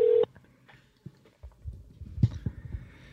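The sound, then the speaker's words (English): A phone call being placed on a phone set in the middle of a table: a brief, loud electronic beep at the start, then soft knocks and handling clatter, with no voices. “Let's hope he answers.”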